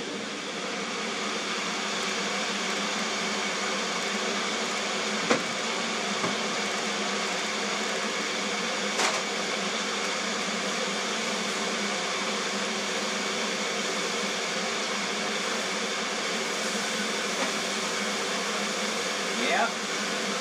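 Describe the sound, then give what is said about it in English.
A Magic Bullet personal blender mixes ozonated water, banana and peanut butter, running continuously: a loud, steady high-pitched motor whir that holds for about twenty seconds, broken only by a few brief clunks as the contents shift. “This is the magic bullet with ozonated water, banana, and peanut butter.”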